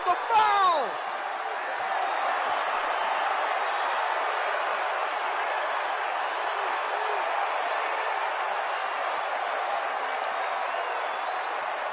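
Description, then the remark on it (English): A basketball arena crowd cheers loudly and steadily for the whole stretch, a dense sustained roar, opening with a brief burst of sharp squeaks and whoops, after Miles Powell hits a step-back three and draws the foul, then rises to his feet urging the crowd on. “Miles Powell rises to his feet and tries to awaken the crowd even more than he just did.”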